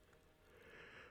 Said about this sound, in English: Fuck, I don't even want to edit out my yawning.